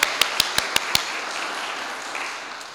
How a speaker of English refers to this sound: Please stand, because then we're going to applaud.